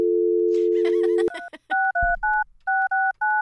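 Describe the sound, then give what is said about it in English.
A steady telephone dial tone hums for about a second, then cuts off into a quick series of roughly seven keypad dialing beeps as a man's number is dialed to call him, evenly spaced and clear, with no talking. “Okay, well, we're going to go ahead and dial him up.”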